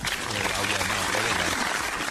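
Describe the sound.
Steady applause from a crowd on a talk show, greeting the news that Tudor Dixon is on the show today: a dense, continuous patter of clapping at moderate loudness, with some low voices and murmur mixed underneath.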